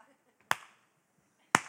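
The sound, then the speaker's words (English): Two sharp, loud hand claps about a second apart, each a crisp snap with a short ringing tail, with near silence between them and no voices. “Are you giving in such a way that you want the applause? Because if you want it, I'll give it to you.”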